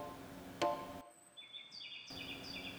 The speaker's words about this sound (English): Ah, here's another bird flying past. The name is Ryukyu Robin, a little bird like sparrow that is colored red, brown, and white. It's so cute.